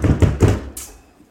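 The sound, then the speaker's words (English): Three heavy, booming bangs on a door in quick succession, loud, followed by a brief hiss as the sound trails off. “You start looking through, but there's a lot of drawers and there's a lot of filing cabinets, but you start opening them up, and before you can find anything, there is a banging on the door.”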